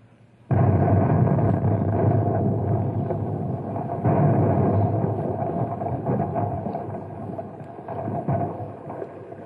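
A Compound C explosive charge, set off by pulling a wire, detonates with a sudden loud blast, then a heavy, sustained roaring rumble follows, swelling again partway through before slowly easing off. No one speaks.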